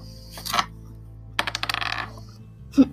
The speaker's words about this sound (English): He gets a 6 plus his 1 for attack to get 7, so you roll your dice. 11, you're able to defend that attack.